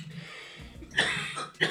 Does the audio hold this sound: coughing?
yes